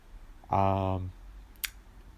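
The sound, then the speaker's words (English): A single sharp click on a laptop, as someone tries to undo an unwanted zoom, sounds once near the end, shortly after a half-second sustained vocal tone from a voice. “I have been clicking and trying to”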